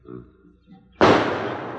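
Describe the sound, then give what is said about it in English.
After a second of near-silence, a tear gas gun fires with one abrupt, loud bang, followed by a harsh sustained hiss that stays strong until the end. “I'm sure pouring it in. Huh. That's lousy stuff. Hmm? Tear gas.”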